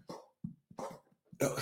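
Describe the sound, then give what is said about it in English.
Three sharp, harsh coughs burst out in quick succession, each followed by a short throaty rasp, with the final one the loudest. “These are the coughs, not the sneezes.”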